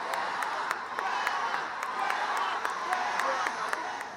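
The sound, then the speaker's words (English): A large outdoor crowd in Battery Park, New York City, roars and cheers for Greta as she takes the stage, in a dense, steady wash of voices, with scattered sharp claps cutting through. The noise stays loud and unbroken throughout. “When she took the stage in Battery Park in New York City, the crowd's roars of Greta were thundering, absolutely thundering.”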